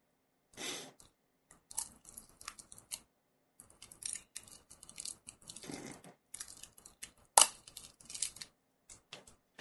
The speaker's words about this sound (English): Alright, the packaging, the plastic is now off.